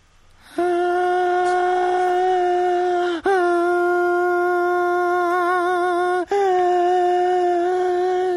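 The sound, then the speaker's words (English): A voice sings inward, holding three long, steady notes while breathing in, each with a slight waver and a brief break between them, fairly loud with nothing else around it. “Not with inward singing, check it out!”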